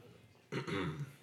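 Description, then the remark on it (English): A single gravelly throat clearing bursts out abruptly after a quiet moment, rasping for about half a second before tapering off. “You had to clear your throat.”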